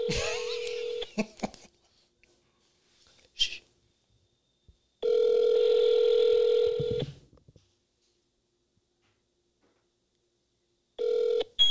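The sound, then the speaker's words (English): A phone call being placed to Taco Bell: a few brief dialing blips, then a steady electronic ringback tone that sounds in long bursts separated by several seconds of silence, with no voices. “I'm about to call Taco Bell right now.”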